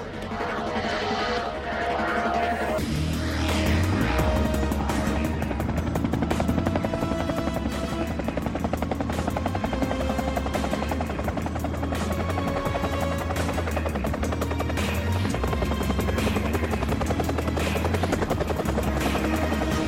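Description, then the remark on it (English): A medical helicopter, arriving to carry a wounded man on a stretcher, roars with its rotor thumping and engine whining loud and steady after a brief build in the first seconds as the pilot prepares to take off, with no voices over it. “Medical help arrives via helicopter.”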